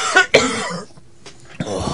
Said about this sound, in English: Is it just me talking about hangovers making you cough yourself like that?